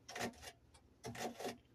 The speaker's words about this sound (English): I know they hear my crunching, but I'm dicing celery, you all.